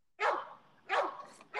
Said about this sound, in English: Whose dog is that?